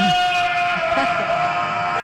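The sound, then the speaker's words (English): A goat lets out one loud, drawn-out bleat, a shrill, nasal cry held steadily for about two seconds before it cuts off abruptly. “We got to play goat sound effects.”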